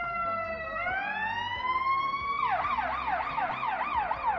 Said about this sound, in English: I know you hear the sirens, so you guys make sure you stay safe, you stay alert.